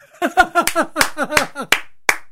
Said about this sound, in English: Let's do some clapping. All right, we're done.